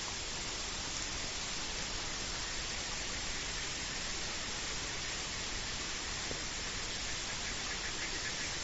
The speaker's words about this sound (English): For example, now you can hear the croaking of the toads and the frogs. You can hear the water gushing below, and many other insects that are screeching away.